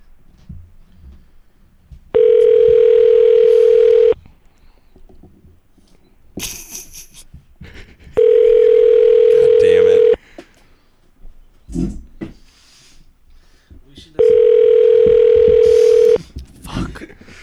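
A phone call to a business rings out through the earpiece: three steady two-second ringback tones, evenly spaced and loud, with only faint shuffling and background noise in the gaps and no one picking up.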